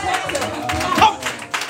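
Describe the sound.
Several sharp hand claps ring out at an uneven pace, fairly loud and close, with a murmur of voices and room noise underneath.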